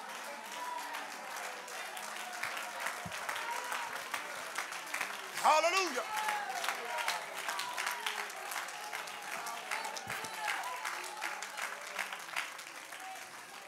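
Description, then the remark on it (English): An audience claps its hands together in praise of Jesus, in a dense, steady wash of applause that fills the whole clip, with a voice briefly rising above the clapping midway through. “I wonder all together, can we clap our hands and lift up the name of Jesus together?”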